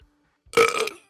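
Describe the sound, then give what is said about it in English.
A single loud burp lasting about half a second, rough and buzzy with a strong tonal core, following a brief quiet moment and ending abruptly. “And I got a burp.”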